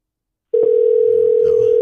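A steady telephone dial tone starts abruptly after a brief silence and holds at a constant pitch, loud and unbroken, with faint background murmur beneath it, as a call is placed to Pruitt's Discount Kangen Water Store of Nashville.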